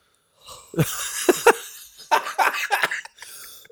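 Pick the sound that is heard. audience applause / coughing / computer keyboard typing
coughing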